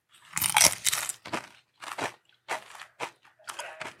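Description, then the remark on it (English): Loud crunching of crisp Dorito chips with sour cream being bitten and chewed, with a burst of dense crackles followed by several shorter, evenly spaced crunches. No one speaks. “Okay, it's described as a perfect combination of crunch and pops.”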